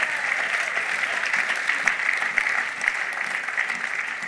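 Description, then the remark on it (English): An audience claps their hands for the Lord during a sermon, in sustained, dense applause, many overlapping claps forming a steady crackling wash at moderate loudness with no speech over it. “Give the Lord a clap of hand, I'm preaching.”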